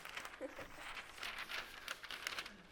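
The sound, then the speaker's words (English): A sheet of vellum drafting paper crinkles and rustles in quick, irregular crackles lasting a few seconds, fairly quiet, with no talking over it. “But this is what we call vellum. Whoops, sorry.”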